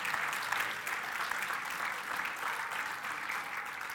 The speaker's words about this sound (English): We give him a clap for being willing.